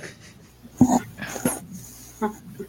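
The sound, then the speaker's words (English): A puppy whines in three short, high-pitched bursts spaced across a couple of seconds, with faint voices and background noise. “There's a puppy. I see him.”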